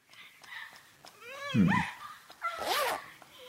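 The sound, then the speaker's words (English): A dog whimpers and lets out a couple of high, sliding yips, whining tones rising and falling in short bursts, moderately loud. “I don't speak fucking dog, do I?”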